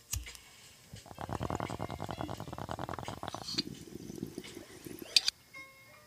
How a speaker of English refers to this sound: Actually, you know what? Let me hit the bong since I know I still have a little bit of weed from before I left for work last night in here.